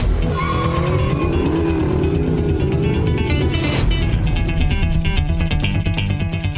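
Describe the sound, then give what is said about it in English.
A 1969 Ford Mustang's engine roars loud with a deep, steady rumble as its tires squeal in wavering pitches during the first few seconds, then the engine keeps growling on its own. “The 1969 Ford Mustang. Pure muscle.”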